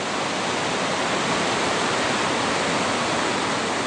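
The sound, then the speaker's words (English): The clear water of the Waikato River rushes steadily a few hundred metres from its source at Lake Taupō, in Taupō. It makes a dense, continuous wash of sound with no breaks or changes, and no voices. “I'm just a few hundred metres from the source of the Waikato here in Taupō.”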